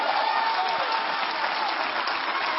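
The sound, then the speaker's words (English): An audience claps for the Lord in a steady, dense roar of applause that holds at a fairly even loudness from start to finish, with no voices standing out. “Somebody give a Lord a clap here.”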